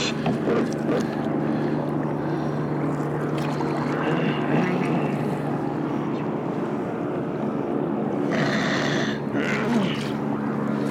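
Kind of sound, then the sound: vehicle, helicopter flying overhead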